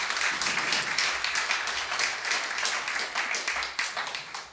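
A church audience claps steadily for several seconds for its connect group coordinator as she is invited up, a dense, continuous patter of many hands at moderate loudness with no voices standing out.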